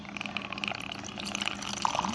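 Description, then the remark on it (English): Liquid pours steadily from a bottle, with air bubbles glugging back through the neck in quick, uneven pulses, clear with no talking. “We're not going to tell you what we're not going to tell you what we're pouring, but just listen to the air bubbles.”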